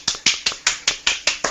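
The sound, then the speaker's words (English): A brief round of applause from what sounds like one person, eight sharp, evenly spaced claps in quick succession, fairly loud, with no talking; applause for Mick Foley. “Round of applause for Mick Foley.”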